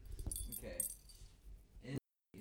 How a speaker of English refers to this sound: Are you scratching the mic?